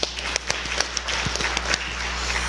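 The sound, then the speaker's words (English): A round of applause from a crowd for the pie makers and ice cream bringers: dense, steady clapping with many overlapping sharp claps forming a continuous crackling wash at a moderate level, no voices over it. “We could also give a round of applause for all the pie makers”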